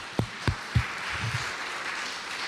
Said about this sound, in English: So thank you to all of you. Can we give everybody here a round of applause?